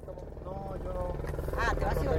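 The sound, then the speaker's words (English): A helicopter's low, thudding rotor hum grows steadily louder as it approaches and lands on a village soccer field, with voices talking briefly over the steady pulsing drone. “Within minutes, a helicopter approaches us as we walk down from the pipeline route and onto the village soccer field.”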